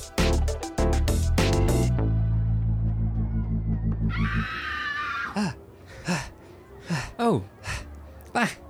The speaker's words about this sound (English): In my daze, I had wandered into a tent where a woman was applying makeup. Startled, she screamed.